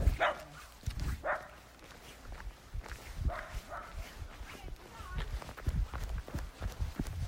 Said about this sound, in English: A little wiener dog and a schnauzer, maybe. Run. Didn't look squat enough to be a Scotty.